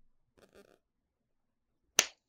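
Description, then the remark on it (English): A single sharp, loud slap of a hand against a knee that cracks out and fades quickly, preceded by a brief faint murmur of voice and then a short silence. “I'm sure that's a knee slapper. Slap real quick for me.”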